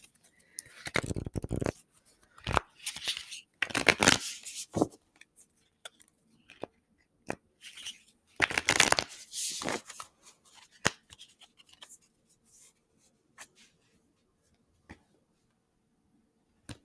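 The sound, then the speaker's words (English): A deck of oracle cards is shuffled in several bursts of brisk riffling and slapping, separated by pauses, then a few scattered light taps and clicks as the handling winds down. No one speaks. “And then I did all the shuffling and ended up with the wolf.”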